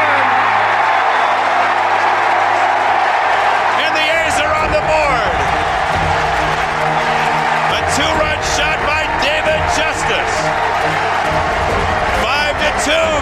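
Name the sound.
baseball stadium crowd cheering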